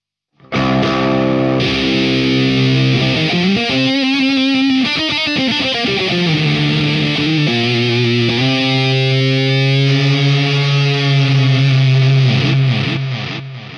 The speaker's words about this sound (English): It's just like, again, goes from like massive rhythm fuzz tones to I use it for leads right now because I'm using the Faro for all of my like rhythm tones, but.